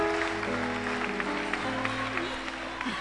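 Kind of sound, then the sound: crowd, audience clapping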